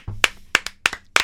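hand clapping

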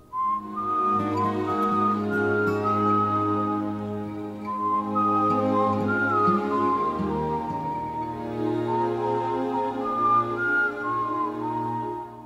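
person whistling a melody

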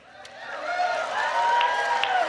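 audience applause

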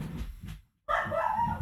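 dog barking

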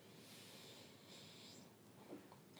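sniffing a drink's aroma

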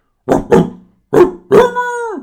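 dog barking

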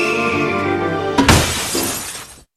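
glass shattering

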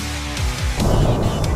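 car interior driving noise

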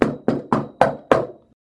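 knock

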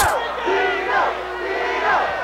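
crowd cheering and chanting

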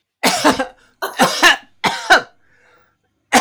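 coughing and throat clearing

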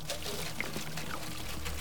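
liquid being poured

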